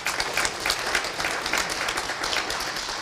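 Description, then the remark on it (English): A crowd at a church service applauds steadily, a dense, continuous patter of many hands clapping at once with no pauses, fairly loud, with no voices standing out. “How come you didn't clap when he preached?”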